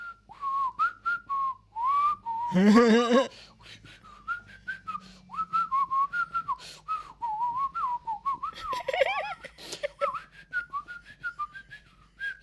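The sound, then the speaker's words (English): A person whistles a wavering melody, the thin tune rising and falling continuously, briefly interrupted twice by short voiced bursts like laughter before the whistling carries on. “Do you know what I whistle most of the time when I end up whistling?”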